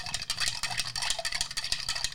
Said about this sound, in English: Give some of that sound effect again. I like how you clink, clink, clink.